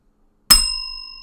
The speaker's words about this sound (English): The bell was somewhere. It took me a second to find it.